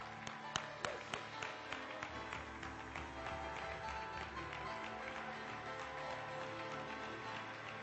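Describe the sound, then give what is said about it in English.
A crowd claps hands to give honor to God, sharp rhythmic claps standing out at first and then blending into a steady, dense patter of applause that continues throughout. “Come on, clap your hands one more time and give Him honor.”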